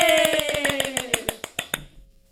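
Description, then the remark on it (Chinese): A short burst of applause from guests after a sung performance: quick, steady handclaps that gradually thin out and stop after about two seconds, with a lingering sung or tonal note underneath at the start. “请来宾掌声鼓励鼓励。”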